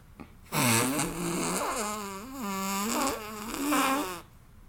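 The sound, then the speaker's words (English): A long, buzzing fart noise made with an arm and elbow, wavering up and down in pitch for about four seconds, loud, with no talking. “I would say that was successful. Thanks. For sure. Well, how do you make a fart noise?”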